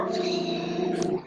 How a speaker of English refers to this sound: Fucking dog.